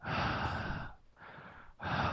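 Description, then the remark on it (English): Heavy breathing with no talking: a long loud exhale, a softer breath after a short pause, then another strong breath starting, each one airy and hissing. “I can just hear you breathing.”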